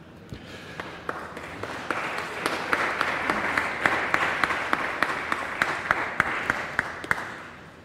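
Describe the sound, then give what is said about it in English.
An audience applauds the Savior during a church worship service, steadily for several seconds, a dense wash of many hands clapping with a few sharp, louder claps standing out at irregular moments before it fades. “If you are new to us and have noticed applause at different points throughout the worship, we'd want you to know that we're not applauding the people.”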